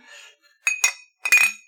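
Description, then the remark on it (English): Glasses clink together in a toast, several bright taps in quick succession, each leaving a short ringing tone that fades away, with no voices. “Cheers.”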